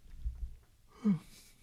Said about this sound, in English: I just had a big fucking yawn and I caught myself in the camera. I was like, that was not the face to make.